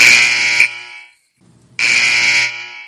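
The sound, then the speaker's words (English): A loud, harsh electronic buzzer sounds twice, each blast lasting under a second with a short silent gap between them, without any talking. “Let me get the buzzer.”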